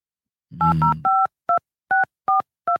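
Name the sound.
phone number being dialed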